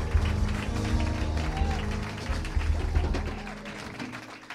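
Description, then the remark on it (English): An audience at a church service gives a clap offering unto the Lord, clapping together in a dense, sustained wash of applause that holds steady for several seconds, with voices and a low, droning musical backing mixed underneath. “I know the clap is good for me, but can we do it much better unto Jesus, the King of Kings?”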